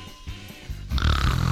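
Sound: imitated snoring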